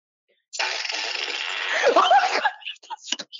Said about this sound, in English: But actually, I just opened this. Oh, there. I just opened this for like the fart with extra reverb. This one. Like, this is the funniest sound effect.